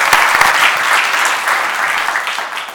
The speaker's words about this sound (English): So if you'll join me again in welcoming our guests, I'd like to offer them a round of applause.